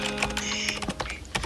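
Rapid typing on a computer keyboard, a quick run of sharp plastic key clicks with an irregular rhythm, fairly loud, with a faint steady hum underneath and no voices.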